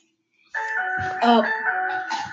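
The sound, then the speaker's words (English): A phone that someone forgot to put on mute rings over a call line, a bright electronic melody of sustained, stacked tones that starts abruptly and keeps going steadily, with a brief muffled rumble partway through. “Oh, somebody forgot to put their phone on mute.”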